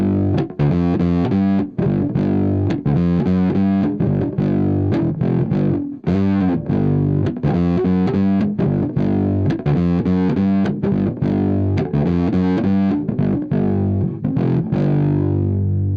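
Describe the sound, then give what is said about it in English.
A fuzzy, distorted electric guitar is played through a fuzz pedal with the starve knob at 9 o'clock and the side capacitor switch turned on. It plays a steady run of chords and riffs with a brassy, throaty edge, loud and continuous for the whole stretch with no talking. “A bit more of a brassy, throatier sound.”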